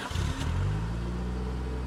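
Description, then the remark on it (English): A car engine revs up loudly and steadily, its low rumble rising in pitch as Howard starts driving his car and it pulls away, continuous with no talking. “Slowly, Howard climbed into his car and started driving.”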